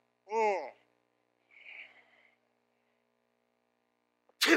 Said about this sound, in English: And I can tell you this person, I'm ready to sneeze, but sorry.